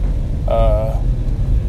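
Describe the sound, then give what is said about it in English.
A garbage truck with flashing lights passes by, rumbling low and steady, with a brief high squealing tone, like air brakes, rising over the engine for about half a second. “This here garbage truck, his lights are flashing like he's in an emergency vehicle, which he is not.”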